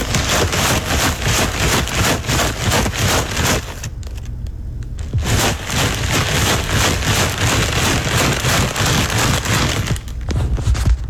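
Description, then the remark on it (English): A bag of tortilla chips is shaken hard for a radio guess-the-sound game, making a dense, loud crinkling rattle of chips and plastic in rapid bursts. It pauses briefly partway through before resuming, with no voices. “No, that is not dog food. No. That is a bag of chips.”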